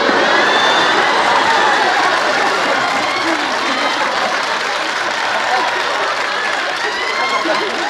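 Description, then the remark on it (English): The Seinfeld studio audience roars with sustained laughter and dense, steady applause at a Kramer "I'm out" scene, loud and continuous for several seconds, with whoops and chatter mixed into the broad wash of clapping. “And the way, like, the studio audience just starts howling and then looking at Jerry and George, like, turn around, like, they're both at the window, like, "What?”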